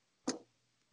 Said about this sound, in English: It's the clock. Keep going. All right, it's the clock.